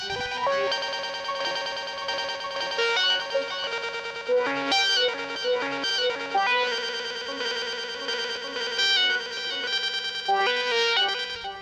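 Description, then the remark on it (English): A modular synth plays a dense, buzzy sequence of sustained notes. Its Pura Rowena distortion, controlled from Maths, swells and eases in waves, and a Disting tape delay adds repeating echoes that smear the tones together. Steady, fairly loud, no voices. “And then I'm controlling the distortion on the Pura Rowena from Maths.”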